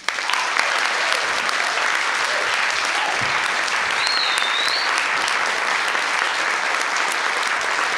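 Steady, sustained audience applause fills the whole clip, a dense wash of many hands clapping at an even level, with a brief high whistle or cheer rising over it partway through.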